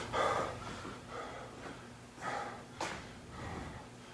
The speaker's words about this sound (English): he had like bad breath control or some shit like that, like during it, or the mics were just like picking up extra, but he was like breathing during it